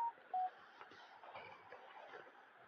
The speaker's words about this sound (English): Okay, my phone is beeping at me again. What could that be? Whew. Okay, another Telegram group I have to mute for my podcast.